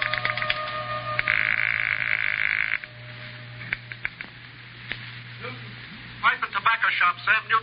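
A rotary telephone being dialed: a steady tone and low hum, scattered sharp clicks, then a loud, rapid run of ratcheting clicks as the dial spins back.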